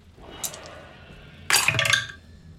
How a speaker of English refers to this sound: Oh, very nice. I like the sound of his dice. It's so good.